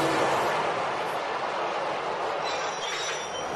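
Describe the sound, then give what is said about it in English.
A loud, continuous roar of a New York City subway train running on its rails, from the opening of the film Saturday Night Fever, with a thin metallic wheel squeal rising toward the end. The noise is dense and unbroken, and no one speaks. “This time we don't hear any music at first, only views of New York City with the sounds of traffic and the subway.”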